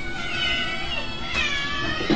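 A cat meows loudly in a long, drawn-out, wavering cry that carries through the whole moment, with no one talking over it.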